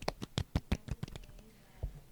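A brief patter of hand clapping, about a dozen sharp claps in quick succession that trail off, then a single late clap. Fairly quiet and close, with no talking.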